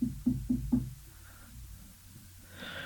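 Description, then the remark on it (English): Four quick, evenly spaced, solid knocks on a neighbor's door, followed by a quiet pause with faint background noise. “You take it next door, you knock on their door.”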